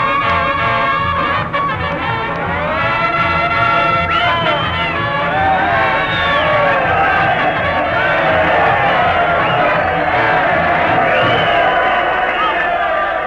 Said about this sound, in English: Hey, isn't that thrilling, Dad? Those cheers are all for me.